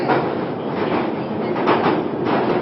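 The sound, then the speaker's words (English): A loud, continuous rumble of a train moving along the rails, with steady clattering and metallic rattles filling the whole clip. “You probably can't hear anything that I'm saying because it's too loud with the train, but there we go.”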